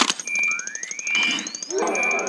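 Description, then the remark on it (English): A sci-fi thermal detonator sound effect: rapid mechanical clicking pulses and little gear-motor sounds from the Jabba the Hutt puppets' animatronic eyeballs, under steady electronic beeping tones, with a whining pitch that sweeps steadily upward, then a brief ratcheting rattle. No voices. “Up next, we have the thermal detonator.”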